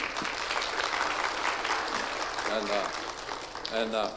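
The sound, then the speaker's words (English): A crowd bursts into sustained, dense clapping for a woman's son at a baptism, filling the whole clip at a steady loud level, with brief voices calling out near the end. “And let's give him some applause.”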